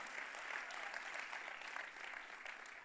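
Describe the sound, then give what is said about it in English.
An audience claps steadily in thanks to God during a sermon, a dense wash of many hands applauding at an even level for a few seconds, with no voices standing out. “Come on, clap if you're thankful.”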